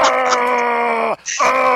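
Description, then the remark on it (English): A loud, sustained electronic scream callout from a pinball machine's skull, set off by repeatedly hitting the loop shot, held for about a second before its pitch sags, then cut off and immediately restarted with a second scream. “how many times in a row do you have to hit it for him to just scream like that?”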